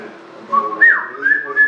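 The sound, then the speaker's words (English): A person whistles a short, shrill melodic phrase with rising and falling pitch sweeps, loud and close, lasting under two seconds with no talking. “You know who can whistle like Yondu?”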